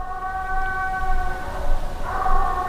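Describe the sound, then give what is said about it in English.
An 11-month-old hound pup on a trail bays in one long, drawn-out howl, a steady ringing tone that swells and shifts pitch slightly near the end. No one speaks. “I'll just leave a little audio clip here so you can get an idea what this pup sounds like.”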